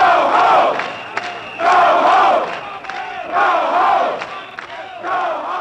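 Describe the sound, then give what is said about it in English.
A loud crowd shouts and screams together in repeated surging waves, each swell of massed voices rising for about a second before dipping slightly, over and over. People come out of bars in the Castro screaming at police, who have entered the neighborhood in large numbers. “Later that evening, the police entered the Castro in large numbers, causing the people to come out of the bars screaming, "Get out of our neighborhood."”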